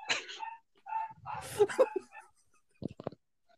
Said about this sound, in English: She doesn't like racism, so she's barking at Clark Kent for his unknowledgeable racism.